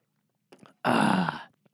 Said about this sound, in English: So I'm going to take a sip of this fine. Ha! Quality H2O.